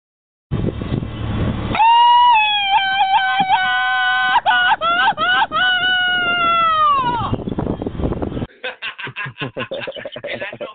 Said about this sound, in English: I know you run into a couple of Mexicans out there on your travels, friends, and so you know what that Mexican yell means. That means something is happened the way it's supposed to be, man.